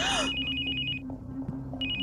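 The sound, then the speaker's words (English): A phone rings with a bright, warbling electronic tone in two bursts separated by a short pause, over a low steady background hum. “And as you're saying they're looking, Henley, your phone rings.”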